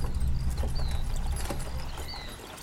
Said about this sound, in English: Bert, Hop, and Artis travel the highway mounted, with one additional pack horse held by a lead in Artis's hand.